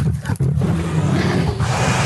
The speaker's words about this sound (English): Bear? Yes. It is a bear. Okay. It's a bear. A growl.